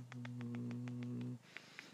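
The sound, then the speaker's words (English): A male cat purrs while nuzzling a person, a low steady rumble with a quick pulsing rhythm that stops abruptly after about a second, followed by faint soft rustling. “Look at that, I'm forming a bond with a cat. Hey. He's purring and meowing.”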